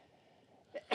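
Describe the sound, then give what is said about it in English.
A quiet background hum, then a sudden sneeze at the very end: a short burst followed immediately by a louder, sharper explosive burst. “Bless you.”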